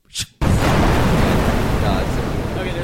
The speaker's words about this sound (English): Hey, you guys want to hear an explosion?